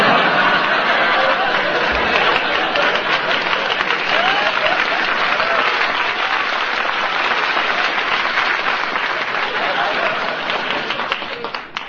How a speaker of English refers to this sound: You got more applause than I do.